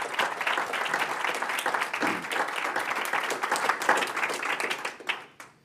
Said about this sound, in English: Well, I'm going to clap for that.